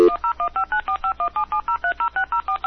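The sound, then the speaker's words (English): A rapid series of about fifteen telephone keypad tones as a phone call is dialed, each a short two-pitched beep in a quick, even rhythm, sounding clear with no voices. “It's time to call him. We could actually call him.”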